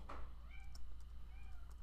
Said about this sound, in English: Do you hear my cats? Yes. They have they have a lot of opinions on an Easter bunny puppy.